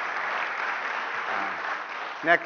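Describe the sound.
Steady audience applause, a dense wash of many hands clapping at even loudness throughout, with a brief voice cutting in near the end.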